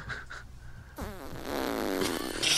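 A long, loud fart that starts abruptly and sputters on for over a second, its pitch wobbling and the sound growing rougher and louder toward the end, with no talking.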